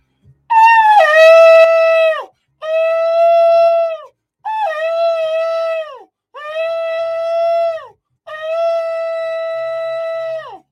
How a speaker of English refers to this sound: Come on, and let's blow the trumpet and let's sound the alarm. Amen.